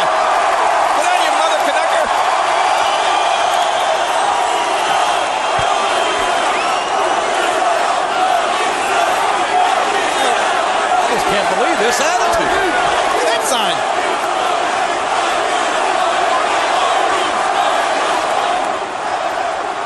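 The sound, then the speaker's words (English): A wrestling arena crowd, incited by The Rock, roars steadily for twenty seconds, a loud, dense wall of cheering and shouting that barely rises or falls, with occasional sharper yells and thuds breaking through. “He left Hogan a bloody mess and no way out, and now inciting this crowd.”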